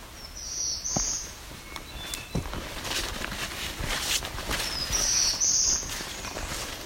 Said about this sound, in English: That's a black-throated blue warbler. Oh, I see him perfectly right now. Flown over my head. It's the second one joining him. Both males.